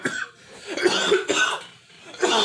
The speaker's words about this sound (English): As he coughs.